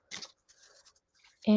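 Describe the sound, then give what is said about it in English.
Soft papery riffling of a deck of tarot cards being shuffled in a few quick bursts, with a loud voice cutting in just at the end. “And it just kind of helps you kind of put that energy into the act of shuffling.”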